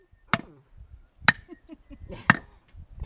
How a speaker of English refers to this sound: And by now we're back with the hammer.